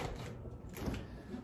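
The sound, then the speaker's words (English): A fridge door being opened and shut as beers are put inside, a soft muffled clunk and rustle set against a low, steady background hum, with no one speaking. “Actually, let's put them in the fridge first.”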